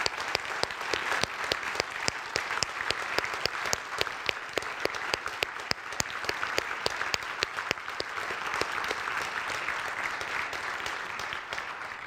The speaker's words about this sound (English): And so can I just ask our armed service men and women to stand, and can we just give a round of applause for all they've done?